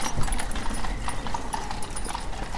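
Horse hooves clip-clop steadily on the road to London, which is blocked with horse-drawn vehicles: a continuous run of sharp, overlapping clops at moderate loudness with a busy background rumble, as if several horses pass by.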